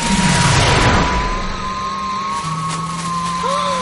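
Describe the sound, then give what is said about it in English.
A motorbike with wings made of plastic bags flies, its engine roaring loudly, the pitch dropping at first and then settling into a steady, whining drone. There is no talking. “The motorbike flies perfectly.”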